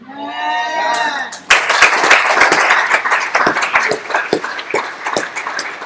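A voice speaks briefly, then an audience bursts into loud, dense clapping that continues steadily for several seconds, a busy crackle of many hands with no clear rhythm.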